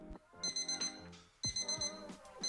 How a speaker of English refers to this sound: Why is your alarm going off so early again?